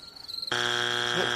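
A foghorn sound effect: one loud, low, buzzy blast held at a steady pitch for just under a second, then cut off abruptly. A faint high whine comes just before it.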